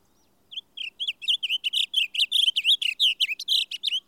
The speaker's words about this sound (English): The song of this bird is a rapid, intricate warble, like that of the indigo bird, though stronger and louder.